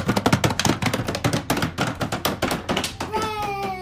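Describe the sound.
Rapid, irregular patter of fingers tapping a surface, imitating falling rain, loud and steady for about three seconds before a short sliding tone rises near the end.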